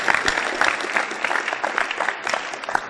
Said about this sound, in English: I think you should clap for Jesus Christ.